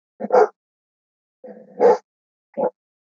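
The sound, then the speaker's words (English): A dog barks three times, a sharp bark, then a longer one with a rough, growly lead-in, then a short final yap, with silence between. “My dog is really upset that I'm drinking coffee.”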